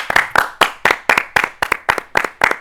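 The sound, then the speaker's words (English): Brisk hand clapping from what sounds like a single person as a guest is welcomed onto a show, about ten sharp claps in a steady, even rhythm, fairly loud with no talking over it. “I needed to clap for myself.”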